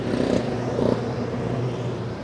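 Race car engines rumble through the pit lane at the Rolex 24 Hours of Daytona in a steady, continuous low drone, with a couple of brief rising revs near the start and no voices, as the number 24 BMW struggles to get moving and the JDC Miller Motorsport Porsche nearly overtakes it.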